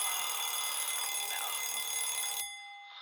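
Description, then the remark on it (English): A loud, continuous alarm clock bell rings with a rapid metallic clatter for a couple of seconds, then cuts off abruptly, leaving a brief fading shimmer. “Don't wanna hear the bell, the alarm clock's my nemesis.”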